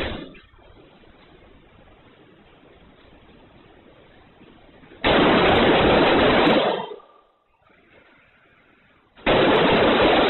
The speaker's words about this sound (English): the young man with the gun turns around and runs the other way. Here you will hear some of the footsteps, and you will hear some of the gunfire. And remember, the gunfire breaks out, officers show up pretty quickly, but then they don't do anything.